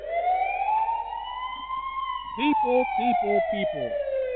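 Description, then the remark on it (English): A loud siren sound effect played from a soundboard wails in one long, slowly rising and falling tone, with a voice briefly talking over its second half. “I need you to press where it says alarm. Or something like a siren or whatever it says.”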